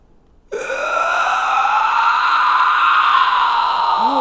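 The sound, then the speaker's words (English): A person imitates a roar, letting out a long, sustained vocal roar, starting abruptly after a brief silence and holding a rough, steady, harmonic-rich tone for nearly four seconds. “Let me guys hear your roar.”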